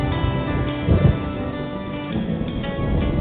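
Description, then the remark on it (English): A low, steady rumble of thunder rolls on beneath a constant wash of rain, swelling briefly before settling back into a dense, continuous roar with no voices. “And the thunder rolls.”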